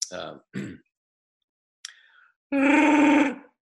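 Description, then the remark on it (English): A person imitates the growl of Chewbacca the Wookiee: two short guttural vocal bursts, a brief high squeak, then a loud, sustained, rasping roar rich in harmonics lasting about a second. “What about you've always done one of the best Chewbacca the Wookiees.”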